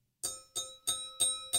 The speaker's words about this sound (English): Ringing the bell just because I felt like the poetry was at a correct moment to do that.